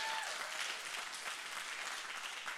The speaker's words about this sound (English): But I'm glad you're here, and I want to take a minute and just give a hand clap of honor to our senior pastors